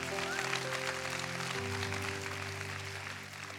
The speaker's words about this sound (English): If you agree with that, why don't you clap your hands in this place tonight?